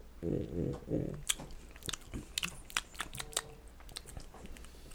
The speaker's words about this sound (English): Nah. Hold on. Gotta smack his mouth a couple more times. You get the taste. You know how we do.